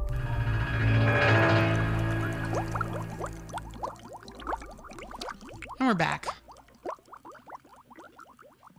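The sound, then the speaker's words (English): A bubbling water sound effect: a stream of quick bubbling pops and rising blips, steady, over a soft tonal hum that fades early; a voice speaks briefly near the end. “I like those bubbles.”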